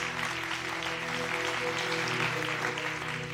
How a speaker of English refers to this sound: come on, if you're going to give him a hand clap, give him a good hand clap today.